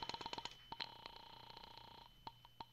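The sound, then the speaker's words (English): A telephone being dialed to call the landlady at Carlton Apartments: a quick run of short, bright tonal clicks, then a few spaced-out ones over a faint steady hum. It's fairly quiet, with no voices. “I'll phone the landlady.”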